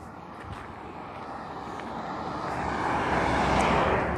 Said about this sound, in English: As always, hold on 1 second. There's a truck coming by here. Hold on a sec.